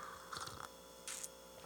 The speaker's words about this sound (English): Now, this is where I'm going to talk about something a little different, but still sawdust related and adjacent to this beer. I just need a sip.